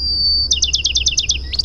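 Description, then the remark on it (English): A Bachman's sparrow, a brownish-gray bird with a rusty-colored crown, sings a clear, high sustained whistle that breaks into a quick rippling trill of about eight bright notes, ending on a rising note. It sounds alone, with no talking. “And then there's Bachman Sterile with its rippling call.”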